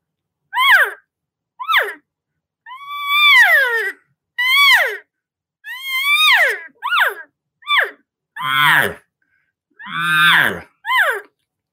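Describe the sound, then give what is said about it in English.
A person imitates cow elk calls as part of an elk calling sequence, with a series of about ten high, nasal mews, some short and falling, others longer and wavering, a few ending in lower grunting tones, with brief pauses between. “Then I'm going to add in kind of some cow vocalizations, and that's kind of the sequence that we go through.”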